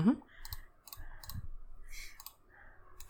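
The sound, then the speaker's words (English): A small six-sided die (d6) clatters and tumbles across a hard surface, making a quick series of light, irregular clicks that are fairly quiet, with faint voices murmuring in the background. “You roll one dice. Okay. And that's a d6.”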